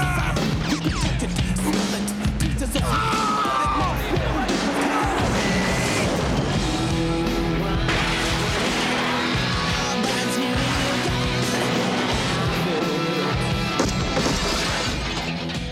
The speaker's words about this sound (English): Squad cars are exploding and Beverly Hills is being completely destroyed piece by fucking piece.